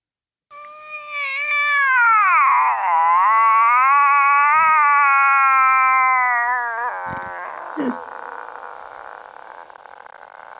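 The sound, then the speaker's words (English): In a recording in which Ed Warren asks for animal imitations, a person imitates a cat with one long, drawn-out meow, loud, its pitch wavering and sliding down for several seconds before fading into a few soft clicks and steady hiss. “How about a cat?”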